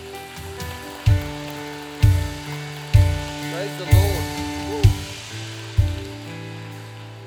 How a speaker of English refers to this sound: Come on, let's clap.